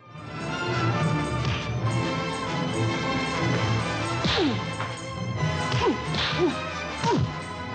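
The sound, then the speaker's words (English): Fight-scene sound effects for a stop-motion animated fight between miniatures of Dave and Chris Elliott: several sharp whooshes and hard smacks, with sweeping swishes and punchy impacts landing over a dense, busy background of music and noise, the hits clustered in the second half. “With careful editing, image enhancement, audio sweetening, and sound effects, the illusion of an actual fight scene is flawlessly recreated.”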